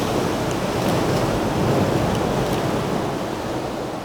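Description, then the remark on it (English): A steady roar of ocean surf surging into a sea cave fills the whole stretch, a dense washing rush with no distinct wave break standing out, swelling slightly midway and easing toward the end. “Come on, where's the waves?”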